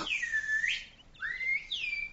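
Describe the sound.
A person whistles two short calls mimicking a bird, each a swooping, sliding note with a brief pause between them. The whistling is clear, with no talking.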